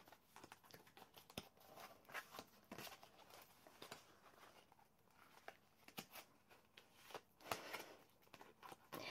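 A deck of tarot cards is shuffled clumsily by a small hand that cannot get around the deck, with uneven slaps, riffles and soft papery scuffs, loose and irregular throughout, with no one speaking.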